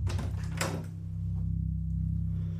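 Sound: front door opening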